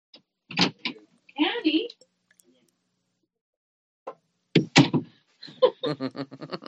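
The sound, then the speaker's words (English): An Irish wolfhound whines and gives short, gruff barks in a few separate bursts with quiet pauses between, ending in a longer run of harmonic, whimpering yelps. “that's my wolfhound. Can you hear them?”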